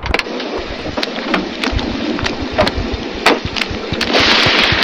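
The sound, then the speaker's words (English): A thunderstorm with a steady roar of heavy rain, broken by frequent sharp cracks and low rumbles of thunder, the downpour swelling louder toward the end. No one speaks. “In the storm!”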